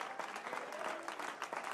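A crowd applauds together, a dense, steady patter of many hands clapping at once that fills the whole stretch without pause, moderately loud.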